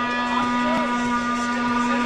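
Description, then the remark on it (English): A horn blows one long, unbroken note at a Comic-Con, a steady low-pitched drone with a bright buzzing edge that holds at an even, fairly loud level throughout. “I hear a siren going off. I think somebody's blowing a horn.”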